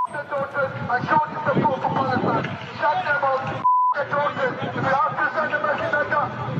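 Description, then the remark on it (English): A single steady, mid-pitched censor bleep briefly replaces the sound partway through, covering anti-Semitic statements in a loud, continuous protest crowd of overlapping shouting voices and noise in London. “What we're hearing here are some vile anti-Semitic statements where we bleep them out.”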